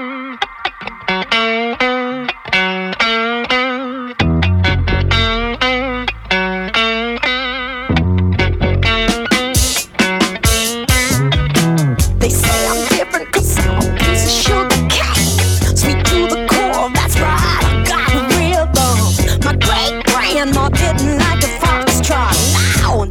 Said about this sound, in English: Play some funk, and this is about as funky as they get.